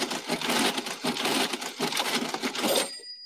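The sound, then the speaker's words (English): An old cash register rattles and clacks steadily for nearly three seconds, its drawer mechanism grinding, then finishes with a bright, high-pitched bell ding that rings out briefly. No voices. “Cash in. Where the bell at? Ring the bell.”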